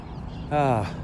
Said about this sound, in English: Lots of bird squawks today and a beautiful sight as I walked through the gate into the pod park. That was many misdirected seagulls in flight, and they were just coming in to land and get down to some worm dancing.